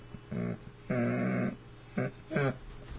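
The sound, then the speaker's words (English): A small dog whimpers hoarsely in four short, strained bursts, the longest in the middle, with brief pauses between, fairly loud against a quiet background. “Poor little dog, feeling kind of hoarse.”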